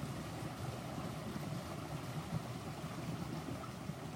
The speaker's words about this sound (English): And this babbling brook is water with a mission. It's got places to go. It's got clarity. And it also sings as it moves. And it stops and pauses and froths up a bit and bubbles with the natural minerals in the water.